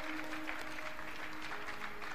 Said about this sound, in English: Clap your hands for Jesus if you are here. Clap your hands for Jesus.